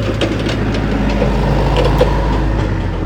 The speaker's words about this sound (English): This is a forklift truck carrying a big plastic bin.